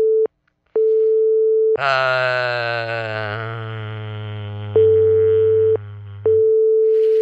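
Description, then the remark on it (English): A phone's electronic ringing tone for an incoming call, a steady pitched beep broken by short gaps, with a loud buzzy electronic drone layered over it for a few seconds. No one speaks. “How do I answer the phone here?”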